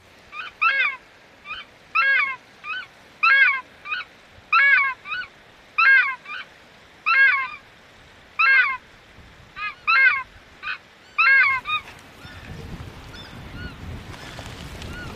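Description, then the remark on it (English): A small loudspeaker system plays a series of loud, honking recorded takahē calls in rhythmic bursts, about a dozen evenly spaced, before giving way to a low rushing wind-like background. “my job is to play takahē calls. So I'll just get out the little loudspeaker system and give a spray of calls”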